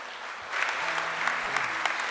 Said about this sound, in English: And would y'all give him a round of applause?